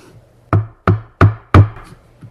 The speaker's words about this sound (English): Knock, knock. Yes. Who's there?